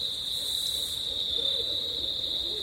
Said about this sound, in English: There's two barred owls calling to each other here at Congaree National Park in South Carolina. I'm on the boardwalk trail and it's dusk.